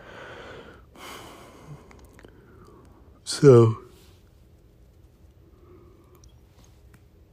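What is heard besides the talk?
yawning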